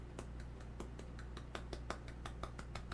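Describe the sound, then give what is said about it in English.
An audience claps during a prayer in Jesus' name, in a quick, steady rhythm, about fifteen sharp claps in under three seconds, fairly soft over a constant low hum, with no one speaking. “For in Jesus' mighty name, we clap for you.”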